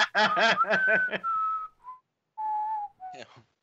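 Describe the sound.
A quick burst of breathy snickering gives way to a casual, offhand whistle of a few sustained notes with short gaps between them, fairly clear, whistled as if pretending not to pay attention, unconvincingly, during a mention of crazy ex-wives.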